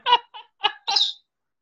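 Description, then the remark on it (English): A pet bird gives four quick chattering calls, harmonic and bright, the last one rising into a higher squeaky note. Fairly clear, with no one talking. “Yes, I can. Your bird.”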